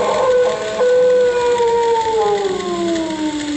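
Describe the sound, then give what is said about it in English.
An unidentified creature's long, eerie howl, recorded on a portable tape recorder: harmonic tones slowly gliding downward in pitch, loud and sustained over a steady background hiss, with no voices. “That thing howls or wails or screeches again, I'll get it on this tape, and I might be able to study it and try and...”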